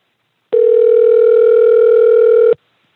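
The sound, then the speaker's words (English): A steady telephone dial tone holds at one pitch for about two seconds, loud and unbroken, then cuts off abruptly, as a call is placed from a radio studio to The Gateway Pundit. No one speaks over it. “I'm going to call him.”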